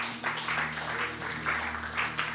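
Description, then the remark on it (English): An audience gives the Lord a hand clap, a dense, steady wash of many hands clapping, swelling slightly in pulses, with a sustained low tone humming underneath throughout. “Let's give the Lord a hand clap and bless.”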